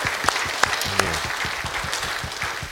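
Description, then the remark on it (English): A church audience claps steadily for the Lord at the close of a prayer, dense applause with a few sharper individual claps standing out near the start and a brief vocal murmur underneath. “Can you give the Lord an applaud?”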